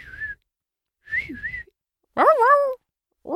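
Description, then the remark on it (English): A person whistles an imitation of a whippoorwill call in three short phrases; the last is louder and wavering, breaking into a strained, airy tone before cutting off. “Mrs. Frickert tries to teach them the whippoorwill whistle”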